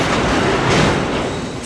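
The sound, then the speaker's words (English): Automated machinery at the Nummi (New United Motor Manufacturing Incorporated) car assembly plant in Fremont, California makes a loud, steady mechanical din, a dense wash of clatter and rumble that continues without a break and with no voices. “A modern car plant, by the way, sounds a lot like a casino. The automated gear plays little songs to let you know that it's running.”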